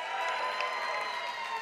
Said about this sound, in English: How many of you are cheering for the Patriots to win today?